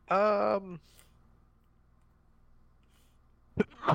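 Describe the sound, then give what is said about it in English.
A single loud, vocalized sneeze with a drawn-out voiced burst that cuts off quickly. A few seconds of quiet follow before someone briefly starts speaking. “Bless you.”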